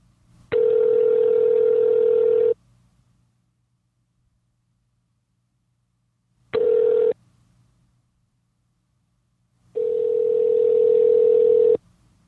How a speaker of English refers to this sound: Okay, it's ringing.